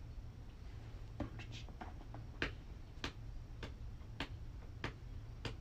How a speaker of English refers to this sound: foot tapping the ground. It's like, dude, how'd you get that sick like drum sound? I feel like... Actually, it's just my foot.